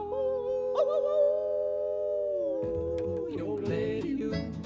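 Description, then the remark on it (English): A long, wavering howl held for a couple of seconds, sung by a human voice imitating a coyote, then sliding lower as busier music with guitar-like strums comes in underneath. “We're gonna hoop and holler and howl at the moon.”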